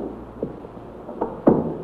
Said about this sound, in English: Now go ahead and close the door, Sergeant.